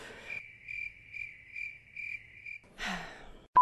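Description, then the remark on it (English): A cricket chirps alone in a steady, pulsing rhythm, about five evenly spaced trills in a quiet space, followed by a brief rustling burst of noise. “Are you saying there should be crickets here? Yeah, insert crickets here.”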